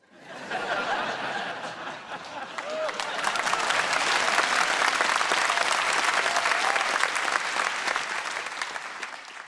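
Applause from an audience, a dense crackle of many hands clapping that swells louder after the first few seconds and holds steady, with a few faint laughs mixed in.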